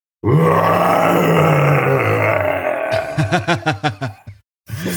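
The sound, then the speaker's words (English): A person belts out an imitation roar, modeled on the Kurgan from the film Highlander: a long, loud, growling low voice that breaks into a quick run of rhythmic pulsing bursts, stops briefly, then starts again. “I have to confirm that you are indeed ready to roar.”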